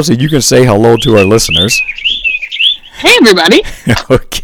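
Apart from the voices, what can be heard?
birds chirping outdoors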